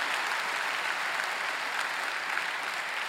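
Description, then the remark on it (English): A large crowd claps steadily for a few seconds, a round of applause for God for the lives impacted that week, a dense, even wash of many hands applauding together with no pauses and no voices rising above it. “Can we give God a round of applause for the lives that were impacted this week?”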